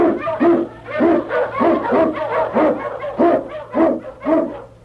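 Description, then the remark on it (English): A sled dog, King, an Eskimo lead dog blazing the trail through storm and snow in the Yukon, howls and yelps in a quick, steady series of about ten short, loud calls, with a low hum underneath and no one talking. “King, the swiftest, strongest of Eskimo lead dogs, blazes the trail through storm and snow for Sergeant Preston as he meets the challenge of the Yukon.”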